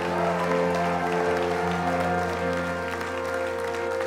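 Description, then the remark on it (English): A church audience claps steadily and continuously for a man whose back was healed as he comes up, a dense wash of hands under sustained, held musical tones, staying at an even loudness throughout without any clear speech. “Come on, give him and Jesus a great big hand clap.”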